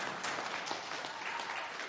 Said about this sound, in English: Come on, clap. That's awesome.